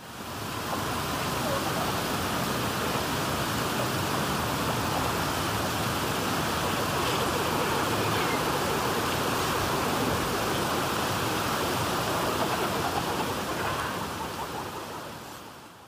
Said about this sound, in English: …, by …, features sounds of the harsh desert being carved by winter winds, as well as sounds of life such as wetland birds.